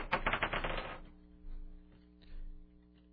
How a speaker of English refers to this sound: Okay, so you are going to try to roll an even on the dice of destiny. All right, here you go, my friend.